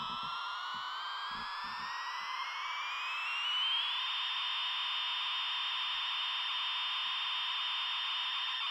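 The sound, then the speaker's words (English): A plastic toy plane with Britannia written on its side and a flashing red light for its engine gives off a loud, harsh electronic buzz that climbs steadily in pitch for a few seconds, then holds one shrill, unbroken drone, with a few soft knocks at the start. “It's a plastic plane with Britannia written on the side and a flashing red light for its engine, suggesting flames.”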